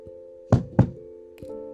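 The heavy old oak door of a library bangs open with two loud thumps in quick succession, followed by a lighter knock, all over a steady low hum.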